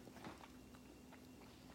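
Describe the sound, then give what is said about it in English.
Quiet chewing of a hollow white chocolate Palmer candy: a series of soft crunchy bites at an uneven rhythm, with no talking and a faint steady hum underneath. “I'm chewing.”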